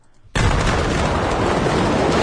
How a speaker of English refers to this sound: if fire's raging and you have bullets. Oh, yeah, they'll explode.